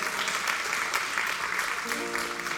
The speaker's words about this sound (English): We have hired a snow cone truck to come here for after service. You can clap for that.